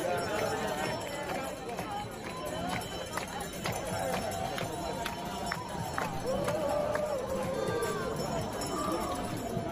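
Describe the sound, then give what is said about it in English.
A crowd of thousands in Times Square cheers and shouts, celebrating the defeat of Donald Trump, in a steady, dense roar of overlapping voices, with scattered sharp claps or bangs and rising calls punctuating the din throughout. “there are thousands of people in Times Square right now cheering, singing, dancing, and celebrating the defeat of Donald Trump.”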